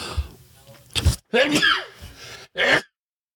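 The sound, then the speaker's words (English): A single sneeze, with a few sharp breathy intakes and a strained voiced build-up before the abrupt, hissing burst at the end, then silence. “Hold on, I got to sneeze.”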